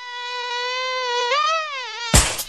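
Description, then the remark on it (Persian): A fly buzzes steadily for about two seconds, its drone wavering slightly in pitch, before a sudden loud, noisy smack abruptly cuts it off. “با ناو اگه نشه با چی میشی تسلیم؟ با مگس کش میشی؟”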